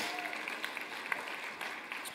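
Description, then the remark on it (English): A church audience applauds steadily during a service, dense overlapping claps forming a continuous bright wash with no voices rising above it, moderately loud throughout. “Can we just clap for the glory of God and kids?”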